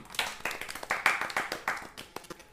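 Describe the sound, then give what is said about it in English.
A soft golf clap: a few hands patting politely in a loose, uneven rhythm, around a dozen light claps over a couple of seconds with no voices. “Sam Cates is our first douchebag of the week. Golf clap.”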